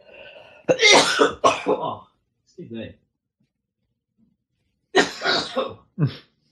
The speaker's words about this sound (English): Okay, this is the bad phase coming. Oh dear. Damn waves of cough.